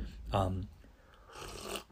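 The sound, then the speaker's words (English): A brief low vocal murmur, then an airy slurp as someone takes a quick sip of fresh hot coffee during a coffee break, lasting under a second and fairly quiet. “Coffee break here. Everyone take your quick sip.”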